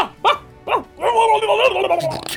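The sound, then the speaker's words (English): A voice imitates bottlenose dolphin noises: two quick squeaky chirps that rise and fall, followed by a longer, wavering high-pitched squeal, fairly loud. “You hear a lot of dolphin noises and the Sahagin is just like...”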